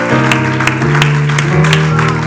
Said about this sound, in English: Let's give the Lord a hand clap of praise together.